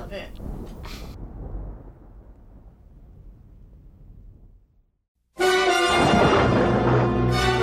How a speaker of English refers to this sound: Yes, I'll put in thunder here, Amina. Lots of thunder.